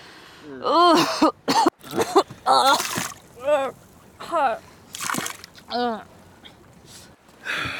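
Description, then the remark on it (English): A seasick young woman retches and gags repeatedly over the side of a sailboat coming into Borderton Harbor, a series of strained, throaty heaves with wet splattering between them, with no clear speech. “No sea legs on that girl, Sam. She's never been on the sea, John.”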